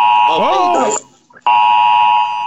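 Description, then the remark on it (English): A loud, harsh emergency alert tone from a phone, a flash flood warning during storms, sounds in two long, steady blasts separated by a short pause, with a voice briefly talking over the first blast. “We have a flash flood warning in this area till 10:15 Central Time.”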